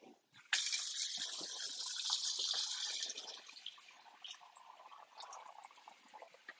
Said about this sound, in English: Isn't that dishes ASMR?